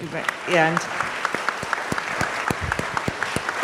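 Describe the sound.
A crowd breaks into applause, a dense patter of many hands clapping, with a brief voiced shout or cheer rising early on over the steady clatter.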